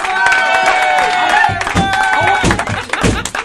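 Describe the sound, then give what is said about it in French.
An audience claps and cheers for Jacques Rougeau for a few seconds, dense and steady throughout, with whoops and raised voices ringing over the rapid patter of many hands. “On l'applaudit, Jacques Rougeau.”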